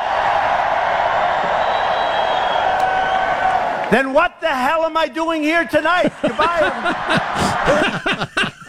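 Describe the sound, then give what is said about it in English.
A large crowd at a political rally roars and cheers loudly for about four seconds, then a man starts speaking over the crowd, whose noise continues more faintly behind him. “Jeez, listen to that crowd.”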